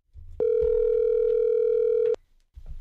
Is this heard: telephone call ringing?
yes